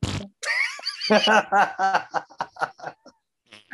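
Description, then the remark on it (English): A voiced, buzzing fart noise, likely imitated by mouth, stretches out and wobbles in pitch, then breaks into a run of choppy, pulsing laugh-like bursts that fade out. “Freaking Melissa McCarthy farting all over the set?”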